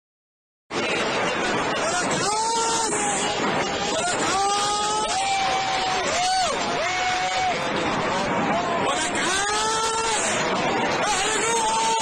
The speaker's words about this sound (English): These sets of rockets being fired off and people celebrating and cheering.